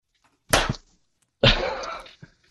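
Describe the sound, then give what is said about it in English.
Two sharp hand slaps about a second apart, two people giving each other high fives, the second one fuller with a brief noisy tail, then quiet. “It was a great high five.”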